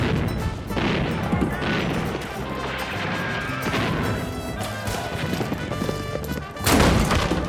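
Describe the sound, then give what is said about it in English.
The heavy front doors of a mansion crash inward amid loud, dense clattering and banging, like hooves and impacts, with a final burst of noise near the end. No one speaks. “The doors to the front of the mansion crashed inward, revealing a band of caballeros dressed in masks and cloaks”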